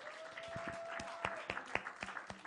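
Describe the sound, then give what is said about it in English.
Audience applause given as a clap offering to Jah: a crowd claps in a dense, uneven patter of sharp hand claps, with a few louder claps standing out, over a faint steady hum that fades midway. “Can we give a big clap offering?”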